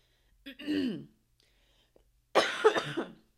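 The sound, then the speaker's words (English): A voiced throat-clearing rasp from a person recovering from the flu is followed after a pause by a harsh, breathy cough burst, with a faint click between them and no words spoken. “Bear with me if I have to clear my throat and if I have to cough.”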